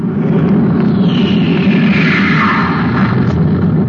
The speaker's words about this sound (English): Hey, listen, the spaceship.